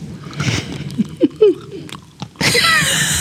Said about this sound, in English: …, give us a good crunch on that nut.